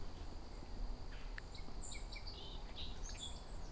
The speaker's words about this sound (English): Song sparrow song.